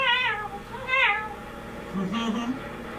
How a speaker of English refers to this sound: That's why dogs really hate sirens. That's right. Because they sound like cats.